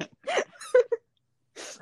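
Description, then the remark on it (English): A female pet dog squeaks, wanting to play, in a few short, high-pitched bursts, two quick yips close together, then a longer whiny squeak after a pause. Fairly clear, with no talking. “Sorry to hear the squeaking of my dog.”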